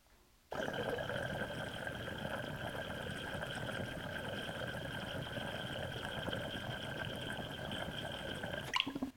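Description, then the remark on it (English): Water bubbles steadily through an XL Double Diffused bong percolator with the nail taken out, a smooth, even purring churn with a faint humming tone. It starts suddenly, holds constant for about eight seconds, then cuts off, with no talking. “Now the Double Diffused has that more smooth purr to it, effortless.”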